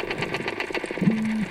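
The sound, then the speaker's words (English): A group of silver perch tap underwater in a rapid, steady drumming train of clicks, joined near the end by a faint low creaking tone like a door hinge or a fishing reel turning. “Under the tapping sound coming from the perch, you can faintly hear what sounds like that creaking door or something like a fishing rod being reeled in.”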